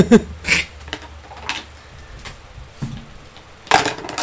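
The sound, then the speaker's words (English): Dice are tipped out of a dice tray, giving a series of sharp, irregular clicks and clatters spread across a few seconds, with louder bursts at the start and near the end. “This is actually important enough for me to empty my fucking dice tray.”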